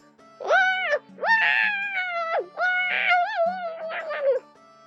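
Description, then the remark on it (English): Link charges at a kid, wailing a squeaky, high-pitched battle cry in three long bursts, the pitch sliding up and down and wavering, fairly loud, with no talking. “Link charged at the kid, wailing his newfound squeaky battle cry.”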